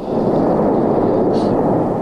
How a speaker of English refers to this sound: Well, the big booms that we're hearing are huge gas bubbles in the magma that are popping open. They may be 100 feet in diameter, and when they get closer to the surface, the pressure inside these gas bubbles is so great that they blow off the magma